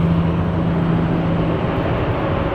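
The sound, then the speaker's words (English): A big truck rumbles past, its loud, steady engine roar and low droning hum filling the whole moment with no one talking. “Big truck went by, sorry.”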